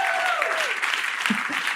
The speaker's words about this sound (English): Thank you. An applause. I think an applause break in general for an accumulated hour of people appreciating how much you want to help other people. I think that's what that applause break was.